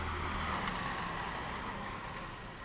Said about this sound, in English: Two people, actually, on a motorbike. And you think, I would not have seen those people if I had not been here. And yet they still would have gone by on this street at this time.